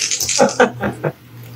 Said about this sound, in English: Defy danger plus charisma. All right, dice, stop being assholes.